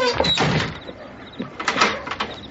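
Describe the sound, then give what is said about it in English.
A door is pushed shut and then fiddled with, followed by a few short metallic clicks and rattles as it is locked, moderately loud. “Let me lock the door.”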